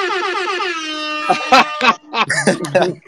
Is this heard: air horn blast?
yes